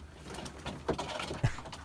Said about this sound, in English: No, I love the birds.